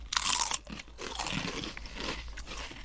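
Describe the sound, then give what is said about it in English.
Crisp Rancheros snack chips crunch loudly in a sharp burst, followed by steadier, softer chewing crackles that continue for a couple of seconds with no talking. “We'll do a chip cheers to the Rancheros.”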